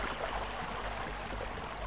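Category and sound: nature, waterfall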